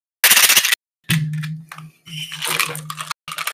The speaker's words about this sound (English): what did we say about playing maracas while on Discord? That just shows how many dice we have.